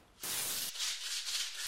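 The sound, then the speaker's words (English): Harsh, hissing scrubbing as a man cleans graffiti off his wall, starting abruptly and continuing in steady back-and-forth strokes with a rough, bristly texture. No one speaks. “Smitty is cleaning graffiti from his wall as his neighbour, Hookie, appears.”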